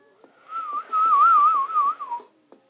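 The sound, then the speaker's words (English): A person whistles a short, wavering melody around one steady pitch, fairly loud, lasting about two seconds with a few soft clicks around it and no talking. “Every time I whistle, I get hella scared, dude.”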